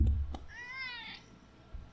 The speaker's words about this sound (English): I love this cat.